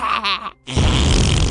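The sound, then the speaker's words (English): A brief strained, groaning vocal sound, a short pause, then a long, loud, raspy fart sound effect that blasts steadily for nearly a second, for a story pig, Snorty Pig, shaking his behind after eating too many sweet potatoes. “Halfway through Snorty Pig's song, he shook his behind and let out a huge fart!”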